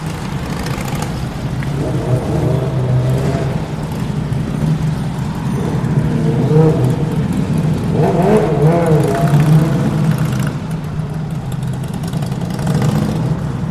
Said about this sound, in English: So we're walking down Old Street now. We're walking under the railway bridge. It's a busy road we're on.